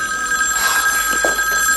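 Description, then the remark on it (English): A telephone bell rings loudly, a bright metallic trill with steady high tones sustained across the whole moment, no voices present. “The phone call is about Erica.”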